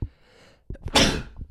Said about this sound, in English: And with that sneeze, I'm going to say thank you guys so much for listening or watching or whatever, however you consume this, the product.